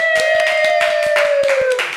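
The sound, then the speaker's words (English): Brief burst of applause: a small crowd's irregular, fairly loud hand claps over about two seconds, with a steady whistle-like tone sounding through most of it before fading. “The crowd goes wild.”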